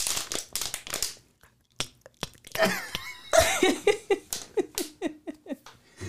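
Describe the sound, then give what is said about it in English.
An empty plastic water bottle crackles and crinkles as it is squeezed, giving a series of irregular, sharp bursts with brief squeaky pops, loud and repeated over several seconds with short pauses between. “It's a water bottle.”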